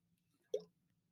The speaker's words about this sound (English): I have a mango White Claw sit next to me. I'm going to take a sip right now.